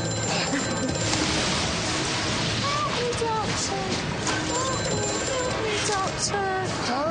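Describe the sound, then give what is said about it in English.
A telephone rings in repeated bursts, buried in a loud, dense wash of background sound with voices mixed in, the ringing thin and high above the clutter. “Phone's ringing, Doctor. Can you hear that?”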